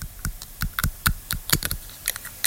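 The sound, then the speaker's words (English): Someone chews on a plastic pen, producing a rapid, irregular series of sharp clicks and crunches, fairly loud and crisp, with no talking, in an ASMR recording. “A person chewing on a pen.”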